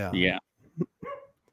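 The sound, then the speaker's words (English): A dog lets out one loud, drawn-out bark, followed by a couple of shorter, softer barks or yips trailing off. “Your dog loves it, you know? I know. Can you hear that? loud and clear.”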